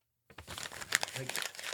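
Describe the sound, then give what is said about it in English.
Crinkling, crumpling paper starts abruptly after a short silence and continues in dense, irregular rustles and crackles, with sharper crunchy bursts scattered throughout. “You can eat these papers. I wouldn't do that.”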